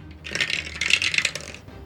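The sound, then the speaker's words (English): Dice clatter and tumble across a hard surface for just over a second, rolled to see where a deflected arrow lands and how far it skitters, a quick run of bright, sharp clicks that rises and then settles to a stop, with no one talking. “I will roll to see what happens to it and how far it skitters away.”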